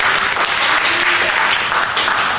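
An audience claps their hands in a dense, sustained burst of applause that fills the space steadily and loudly, with faint voices mixed in beneath the clapping.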